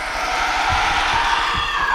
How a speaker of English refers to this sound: I looked around and saw the dirty fingernails attempting to claw into my flesh, and a gaping mouth of crooked teeth moving towards my face, spittle flecking out with a gasping screech.